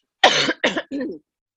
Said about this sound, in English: Hang on, I'm going to cough.